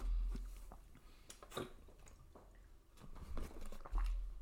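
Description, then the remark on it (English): Someone drinks water: a few wet gulps and swallows with soft mouth clicks, quiet and irregular, with no talking. “Note to self, also drink water when you're doing a podcast.”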